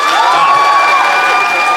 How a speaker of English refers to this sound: But if you think Ben and Joe won the day, I would like you to applaud now.